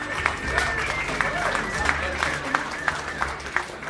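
An audience at a storytelling show in Denver applauds to welcome the next storyteller, a comedian, with a dense wash of clapping, a few sharper claps standing out at a steady beat; the applause stays fairly loud and even throughout.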